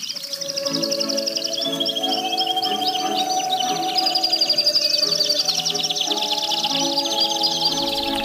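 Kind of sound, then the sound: bird, birds singing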